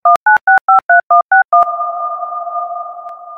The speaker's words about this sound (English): Dude, I added reverb to a DTMF tone. Like, fuck, dude, if you can't handle that.